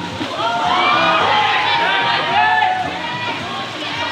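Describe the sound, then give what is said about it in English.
A large crowd shouts and cheers continuously at a cardboard boat regatta, where teacher and student teams race cardboard and duct tape boats in a giant pool, many overlapping voices at a steady, loud level, with faint sloshing and splashing water mixed underneath. “There's so much cheering and excitement happening next door.”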